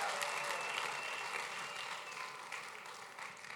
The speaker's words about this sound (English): And everybody said, amen. Give the Lord another great hand clap and you can be seated.